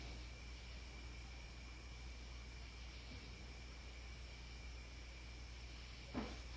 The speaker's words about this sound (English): So here's a clip where we heard knocking responses in the attic.